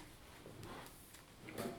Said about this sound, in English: Oh, I heard the door again.